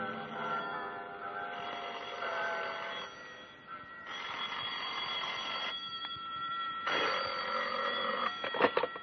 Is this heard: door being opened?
no